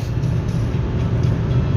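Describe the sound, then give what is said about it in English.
A car passes a truck on the road as the truck speeds up: a steady, loud low rumble of engine and tyre noise at highway speed, with no clear swell and no voices. “There, now we passing this truck.”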